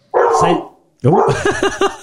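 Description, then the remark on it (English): A dog barks loudly: one drawn-out bark, a short pause, then a quick run of sharp, yelping barks in succession. “If it's a cat, he'd be up barking like crazy. But a dog, he's dead to the world.”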